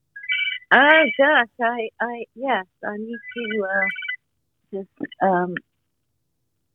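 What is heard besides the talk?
phone ringtone ringing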